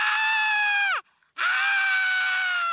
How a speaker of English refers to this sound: What the hell is that noise? That caterpillar is screaming.